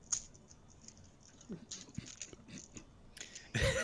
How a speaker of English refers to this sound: I was going through all my dice just to get to the D4 at the bottom.